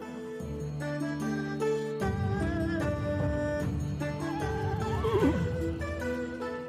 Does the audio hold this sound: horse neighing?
yes